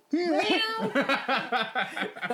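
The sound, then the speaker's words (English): A person gives a drawn-out, wavering vocal meow imitating a cat, followed by a rapid series of short, choppy voiced bursts like giggling, all fairly loud. “But like, you can meow. I like the meow.”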